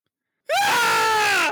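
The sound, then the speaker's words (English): A single loud, sustained human scream from the original 1996 slasher film Scream bursts in after a brief silence and holds at full volume for about a second before cutting off, piercing with no talking. “And John, how would you tell someone you watched Scream without using the title? Headphone warning.”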